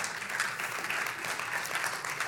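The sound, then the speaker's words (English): An audience claps in a dense, steady wash of many hands, in response to a remark about who to vote for in Tuesday's election, filling the whole clip with a sustained crackling roar at even loudness, with no speech over it. “Who we vote for, yeah, you can clap for that.”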